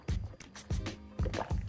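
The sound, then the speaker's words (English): Someone takes a few sips of juice, with four wet gulping swallows in an uneven rhythm, each a soft low thump with a splash of liquid noise, and no talking. “I need to take a sip of my juice.”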